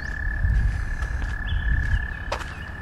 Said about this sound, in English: Of course, these frogs singing.